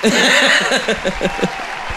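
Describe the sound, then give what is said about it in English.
A burst of canned applause from an applause button sound effect, a steady bright crackle of clapping lasting about two seconds, with rhythmic chuckling laughter over it that fades toward the end. “Come on, guys. Hit that applause button.”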